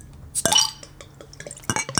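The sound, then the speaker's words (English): Bottled wild ale or sour ale being poured into a tulip or chalice glass: a few sharp glassy clinks and a short splashing burst, with quieter trickling and fizzing between, no voices. “Now I'm going to pour this.”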